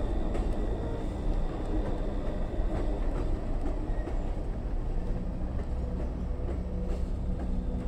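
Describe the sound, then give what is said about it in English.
A freight train rumbles steadily along the rails, a heavy continuous roar with faint metallic clanks and a thin high squeal riding on top, loud throughout with no voices. “for more than a decade he crisscrossed the US by freight train”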